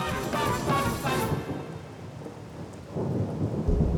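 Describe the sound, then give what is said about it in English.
Steady heavy rain hisses throughout while deep thunder rumbles roll in, swelling louder toward the end with a low, booming growl, a tropical storm. No voices, just the storm. “On the night of his demise, the mansion was a refuge from one of the tropical storms that are standard in Nassau.”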